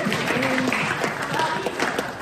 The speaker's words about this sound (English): Let's get a round of applause for Liberty.